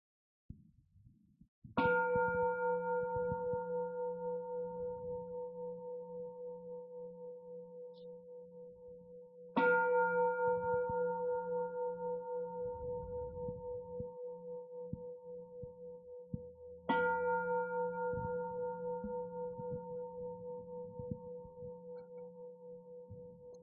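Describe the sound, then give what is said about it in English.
A meditation bell is struck three times at slow, even intervals during a Buddhist dedication of merit closing an evening of practice, each stroke ringing out in a long, resonant shimmering tone that fades gradually before the next. No voices. “May the sound of this bell extend to all nations and peoples so that all suffering will cease.”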